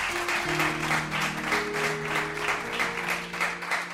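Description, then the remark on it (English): An audience claps steadily for several seconds, a dense, continuous patter of many hands, while sustained organ or keyboard tones hold underneath. “Let's give them a round of applause once more.”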